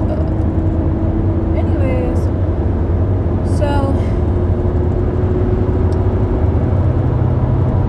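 A car engine drones steadily as the car picks up speed while being driven, a loud, continuous low rumble with a faint rising whine, heard from inside the vehicle, with a couple of brief chirps over it.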